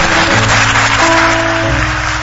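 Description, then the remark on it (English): A crowd claps steadily and loudly, a dense wash of hand claps blended with low sustained tones underneath, continuing without a break for a couple of seconds. “A clapping that encourages. A clapping that is encouraging.”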